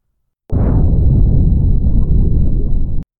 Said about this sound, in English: The explosion shuddered through the dome. It rattled my teeth. I felt like my eardrums would explode.